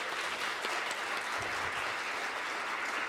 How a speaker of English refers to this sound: Can we give another round of applause for...